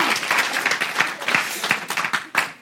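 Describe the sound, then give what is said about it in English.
A room full of people applauds steadily, a dense patter of many hands clapping at once, loud, sustained for a few seconds without fading. “Come on, let's not do the golf clap if we're going to do it.”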